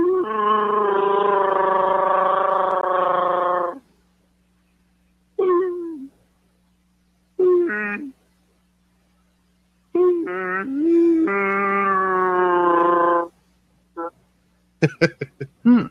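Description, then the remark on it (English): A contestant in a Wookiee roar contest imitates a Wookiee roar: a long, loud, gargling howl, then a few short yelps, another drawn-out warbling roar, and some quick clipped sounds at the end. Alone. “Wookiee Roar Contest Round One”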